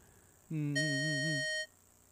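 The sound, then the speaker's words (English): A steady, bright electronic tone at E flat holds for about a second. A lower wavering hum, like a voice matching pitch with vibrato, starts just before it and overlaps most of it. “E flat. Very good.”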